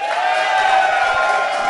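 A live audience responds with a loud, steady wash of applause and cheering that holds without a break, a dense crowd roar with voices mixed into the clapping, voting by applause on a fantasy football opinion about Le'Veon Bell.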